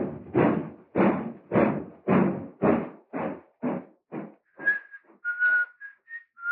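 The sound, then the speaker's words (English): A steady series of regular thuds gives way to a man on a train platform, hands in his pockets, whistling a short, bright, merry tune in clear, lilting notes, fairly loud, with no talking. “Jim has his hands in his pockets. He's whistling merrily”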